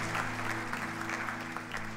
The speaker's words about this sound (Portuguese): Aplauda o Senhor mais uma vez e adore.